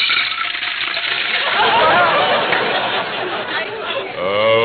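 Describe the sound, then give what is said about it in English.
Water is poured from a pitcher into a bowl for washing up, a steady splashing pour lasting several seconds, with a voice starting to speak just as it ends. “Well, there's water in the pitcher. Just pour it into the bowl.”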